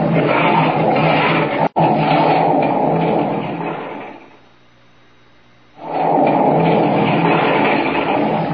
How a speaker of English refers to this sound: Down from the top of the mountain hurtles the mass of rock and earth.